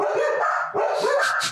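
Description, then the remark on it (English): Several dogs bark excitedly because the owner's wife is coming, in a rapid, overlapping burst, loud, with high yips mixed into the continuous barking. “My dogs are erupting because my wife is coming.”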